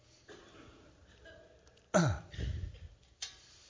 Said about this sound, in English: But you see, I can obey some of the teachings of Jesus Christ, and I just knocked some of my cough drops off.